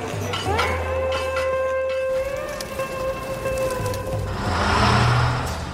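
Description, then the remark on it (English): Busy city street traffic in Yangon, where the speaker takes the bus: a deep engine rumble and a steady wash of road noise, as a long high tone like a horn or brake whine sounds for several seconds. No one speaks. “In Yangon, motorbikes are outlawed. Why is a matter of much rumor and speculation. So it's the bus for me.”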